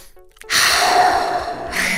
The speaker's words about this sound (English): Yeah, start by getting them to calm down and use the Swiss Army knife in the mental health toolbox, deep belly breathing.